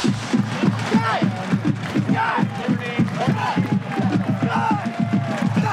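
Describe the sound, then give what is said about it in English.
A huge stadium crowd of about 70,000 fans cheers and roars without letup as the Iowa Marching Band marches down the field for the pregame, a dense, loud wall of overlapping voices with shouts and whoops rising out of it across the whole stretch. “The cheering from the crowd is just deafening.”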